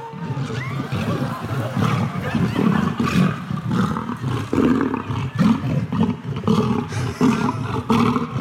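Lions roar over and over, deep and rumbling, in loud overlapping bursts that keep the sound going with little pause, a rough growling texture throughout.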